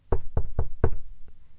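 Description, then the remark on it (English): Four firm knocks on a wooden door in a quick, steady rhythm, followed by a faint fifth tap. No one speaks. “Well, the giant knocked once again.”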